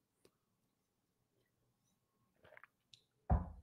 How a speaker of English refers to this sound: Let me grab a drink of water here.